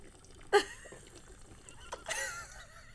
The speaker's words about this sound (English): the next thing you know, she's just like guzzling from a bottle